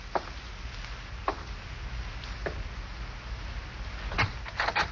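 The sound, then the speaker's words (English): Three slow, evenly spaced footsteps cross a room, followed by a quick cluster of clicks and rattles as a front door is unlatched and opened, all over a low steady hum with no talking. “Slowly, you walk to the front door.”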